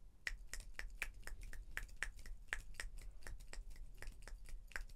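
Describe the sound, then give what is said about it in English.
Many fingers snapping together in a rapid, irregular patter of crisp, bright clicks, sustained for several seconds like a crowd applauding by snapping instead of clapping, with no voices. “It is applause that one might hear instead of hand claps at a socialist convention or at a Democratic presidential campaign speech.”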